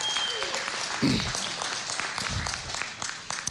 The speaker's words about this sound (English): Big round of applause for all of our participants. Yes.